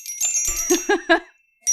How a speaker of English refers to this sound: I think we transcended the chimes already.